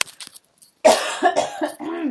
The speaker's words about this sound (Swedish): Så, kråkar jag. Vad roligt att du tog ut dem. Jag hostade rätt i dem förut.